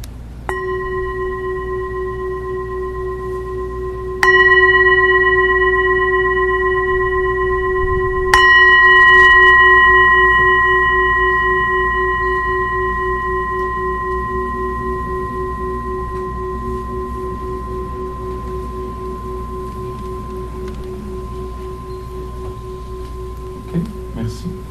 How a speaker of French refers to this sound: J'espère que la cloche ne vous a pas réveillé.